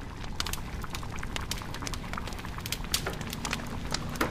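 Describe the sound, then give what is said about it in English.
A fire crackles and gently spits steadily beneath a bath of water that is beginning to boil, sharp irregular snaps over a dense low rumble, with no voices. “The fire crackles and gently spits. The flame grows and the bath of water begins to boil, waiting for the head.”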